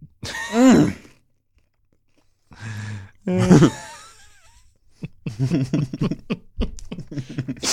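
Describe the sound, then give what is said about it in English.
Crunchy chewing of toast in irregular bursts, with wet mouth noises and a few murmured, hum-like vocal sounds between bites. “I just need one more bite of this toast.”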